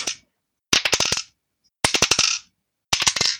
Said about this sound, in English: That sounds like a lot of dice.